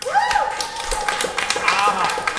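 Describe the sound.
A crowd applauds with dense, steady clapping, mixed with enthusiastic whoops and cheering voices rising over it throughout.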